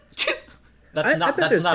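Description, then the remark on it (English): A voice imitates a cute little sneeze, one quick high, breathy burst, followed after a short pause by speech with a sing-song, rising pitch. “Like, I've never heard a guy with a cute sneeze, like a little”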